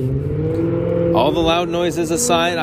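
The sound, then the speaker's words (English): A car engine hums steadily and loudly, its pitch wavering as it drives past. Partway through, a voice joins in on top of the engine noise. “Well, that car was sort of getting things wound up again.”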